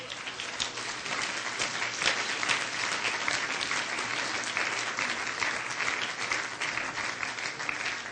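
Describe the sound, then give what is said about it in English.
An audience applauds steadily, a dense patter of many hands clapping at an even loudness that fills the whole stretch without pause. “Let's give them a clap.”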